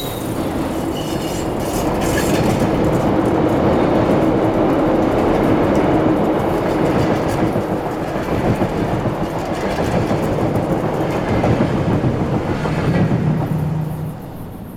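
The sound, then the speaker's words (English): A passenger train rumbles steadily along the rails, its wheels clattering in a rhythmic clickety-clack with a faint squeal, before easing off slightly at the very end. No one speaks. “The passengers on the train, did they see him?”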